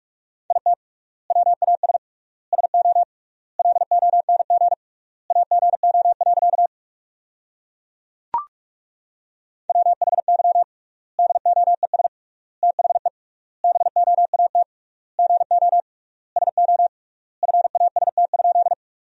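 Rapid Morse code at 45 words per minute sending sentences built from the top 500 words with triple word spacing: a steady mid-pitched tone keyed in quick bursts of dots and dashes, grouped into words with long gaps between them, plus one sharp click partway through.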